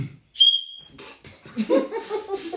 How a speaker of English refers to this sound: And it was a safety whistle. If you got stuck, you blow it, people hear it. Right. She didn't bring it. So they gave me this one. It don't work that well.